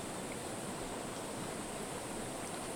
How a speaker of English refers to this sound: So we're washing away, letting go into this pure running mountain water, all of these categories, habits of thought.